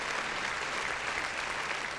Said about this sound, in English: Round of applause. Round of motherfucking applause.